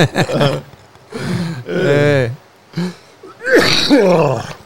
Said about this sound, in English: Well, that's what happens when I laugh. I cough.